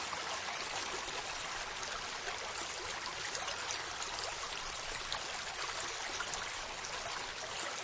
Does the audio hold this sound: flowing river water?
yes